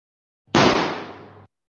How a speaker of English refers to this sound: I'm taking it that these gunshots are like rejection and then clapping is positive.